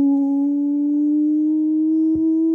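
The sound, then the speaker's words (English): A siren sound effect holds one loud, steady electronic tone with a slight upward drift in pitch, broken briefly by a short click near the end. No voices are heard. “Right, that is the nonsense siren.”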